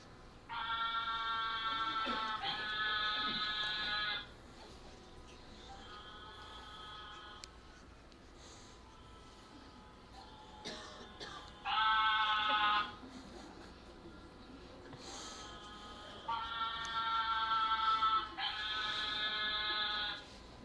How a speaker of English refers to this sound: This is the mating calls of the narrow-mouthed toad. And if you don't find this to be particularly appealing as a mating call, then you are not a narrow-mouthed toad.